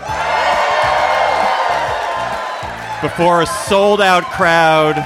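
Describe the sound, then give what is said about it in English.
A sold-out live audience at the Bell House in New York cheers and whoops loudly for about three seconds, a dense roar of voices, before it settles and a single voice begins speaking over the fading crowd. “We're live at the Bell House in New York before a sold-out crowd.”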